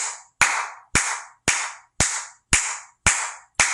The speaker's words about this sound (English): Okay, so let's do this together. Just start clapping. I'm not afraid to clap.